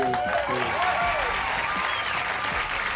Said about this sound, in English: Thank you. That's way too much applause, really.